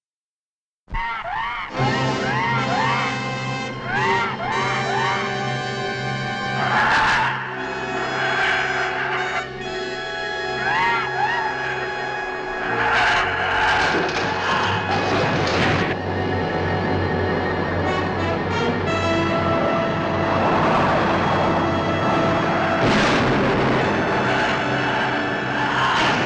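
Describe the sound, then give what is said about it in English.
A loud, continuous monster-movie trailer soundtrack of dense, dramatic orchestral music, punctuated by screams and several booming, explosive bursts, with no clear speech. “We are doing The Giant Claw. Here's the trailer.”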